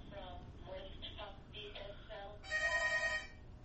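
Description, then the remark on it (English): A telephone rings: a series of short chirping electronic tones, then a louder, sustained bright ring near the end, over a low background murmur. “We got a phone call.”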